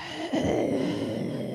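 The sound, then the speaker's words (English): A person performs exaggerated heavy breathing, a loud, drawn-out breathy rush of air that starts abruptly and continues steadily without any talking. “This is heavy breathing.”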